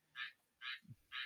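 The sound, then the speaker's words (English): A tree frog calls three times in a steady rhythm outdoors in the rain, each call a loud, bright, raspy burst lasting about a third of a second, with no talking. “I think it's actually a tree frog. Oh, it's a tree frog.”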